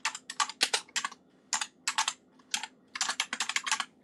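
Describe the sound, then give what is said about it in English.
Rapid clicking of keys on a computer keyboard, typed in quick irregular bursts with short pauses between them, over a faint low background hum. “Sorry about the typing noises.”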